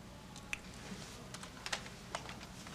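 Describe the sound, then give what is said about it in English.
Quiet, irregular clicking of keys on a computer keyboard, a handful of sharp taps scattered over a few seconds with no voices present. “Just use the keyboard. The keyboard. How quaint.”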